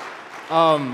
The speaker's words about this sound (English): We can clap for that.